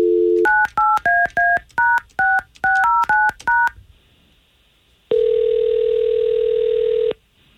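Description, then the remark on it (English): A brief dial tone gives way to a quick run of about a dozen touch-tone beeps as a phone number is dialed, followed by a pause and one long, steady ringback tone, all clear with no talking. “We're going to call her right now, okay?”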